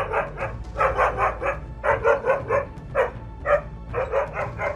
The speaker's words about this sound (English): The sound of the barking dog with the drooping saliva, which automatically increased the acceleration of the scooter.